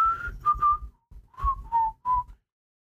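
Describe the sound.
A person whistles a short, jaunty TV theme melody: a handful of clear notes in two brief phrases with a small pause between them, with no talking.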